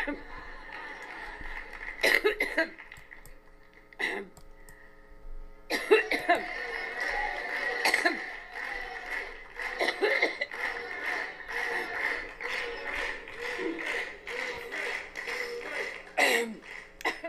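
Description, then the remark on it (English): Hillary Clinton coughs repeatedly in sharp, uneven bursts over roughly seventeen seconds, a prolonged uncontrollable coughing fit at Mansfield College, with brief pauses and a steady background hum. “Hillary Clinton coughs uncontrollably at Mansfield College requests water.”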